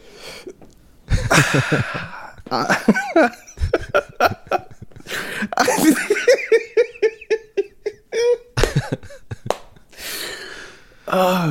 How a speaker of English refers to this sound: Wow, I'm choked up. You see that sniffle was tears.